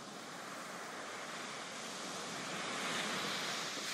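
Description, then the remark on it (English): Ocean surf washes steadily onto the shore, a broad continuous hiss of breaking waves that swells slightly louder toward the end, with no voices present. “Take the seat and look out into the ocean.”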